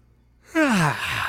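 A single drawn-out yawn, breathy and voiced, its pitch sliding steadily downward over about half a second before trailing off into soft breath. It is close and fairly loud, with no talking.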